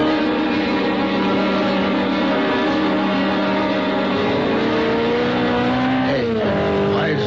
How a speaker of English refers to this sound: The sports car looked like a Simonetti. I couldn't tell. Went by me too fast. Must be doing close to 90 or 100. Heading west on Trumbull.